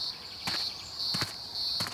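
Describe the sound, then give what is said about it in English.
A green grocer cicada, big and green with a bright green body, dull red eyes and transparent wings, hums in a steady, shrill high-pitched drone that swells louder in regular pulses, with a few soft thuds underneath and no voices. “This humming noise is from a cicada called the green grocer because, well, it's big and green and it likes eating its vegetables.”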